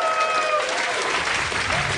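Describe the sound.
An audience breaks into steady applause, a dense wash of clapping that stays loud and even throughout, with a few faint voices cheering beneath it.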